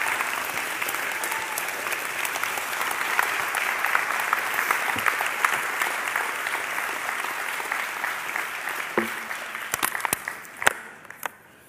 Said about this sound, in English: One more round of applause for these folks.